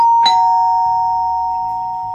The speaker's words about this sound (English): Katie's mum rang the doorbell to pick her up and drive her home